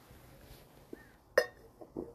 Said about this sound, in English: Hold on a sec, let me take a swig of water real quick.